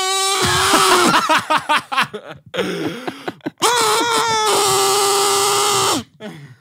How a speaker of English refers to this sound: Kazoo? I got you a kazoo.